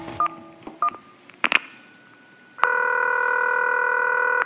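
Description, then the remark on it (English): A few short telephone keypad tones beep in quick succession as a producer calls a rabbi's cell phone in Palo Alto, California, followed by a sustained, steady ringing tone that holds loud and clear until the end, with no voices present. “Producer, please call his cell phone.”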